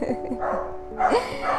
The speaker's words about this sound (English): God, this dog does not want to stop barking. What do I do?